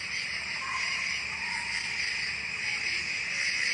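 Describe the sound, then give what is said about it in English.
Crickets chirp in a steady, continuous high-pitched trill that fills the whole stretch at an even level, with no voices and no pauses. “Crickets.”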